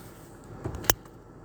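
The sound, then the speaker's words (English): Quiet, steady low rumble of a car interior, with a soft thud and then a single sharp click partway through; no one speaks. “I don't know how it's gonna come out because y'all know I'm in the car.”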